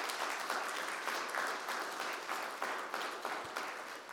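A crowd applauds steadily for about four seconds, a dense, even wash of many hands clapping at once, fairly loud and sustained with slight swells, no voices over it.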